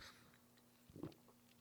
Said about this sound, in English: So with that, let me get a sip of water, and we're going to jump into our big topic for discussion today.